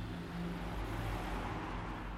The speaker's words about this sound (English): Then they started the car, and the two drove away from the house and out of town.